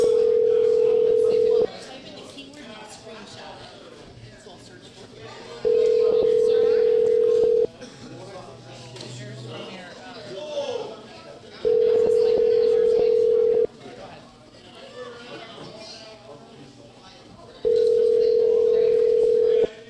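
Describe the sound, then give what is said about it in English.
An outgoing phone call's ringback tone repeats four times, each a steady two-second buzz followed by a pause, with no answer. Faint voices and background murmur fill the gaps between rings. “I don't think they're gonna answer their phone.”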